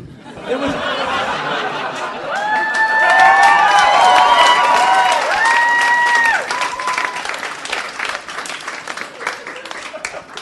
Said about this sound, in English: You just got a standing ovation for a pun.